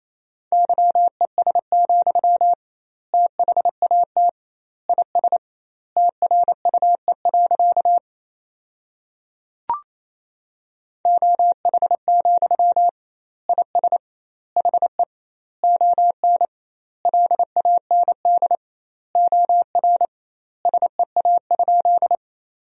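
Rapid Morse code at 28 words per minute sending sentences from the top 500 words with double word spacing: a single steady mid-pitched tone keyed into quick dots and dashes, sent in word groups separated by short pauses, with one brief click midway.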